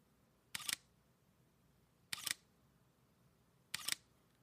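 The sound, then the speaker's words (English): Three crisp shutter clicks from a Sony A7R II mirrorless camera, evenly spaced about one and a half seconds apart, each a quick double-snap against a quiet background with no talking. “Now, for comparison, here's my Sony A7 R2.”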